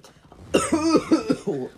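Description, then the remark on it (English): A voiced fit of coughing: a sharp first cough followed by three or four rougher, throaty hacks in quick succession, with no talking over them. “I was about to say something and then I don't know I coughed.”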